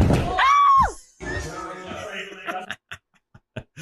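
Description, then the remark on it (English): A loud, piercing scream from a video of a gymnastics accident, in which a person launches their neck into a wall, rises and falls in a single burst near the start, then gives way to muffled background voices and a few scattered short knocks. “I mean, that scream at the end really does it.”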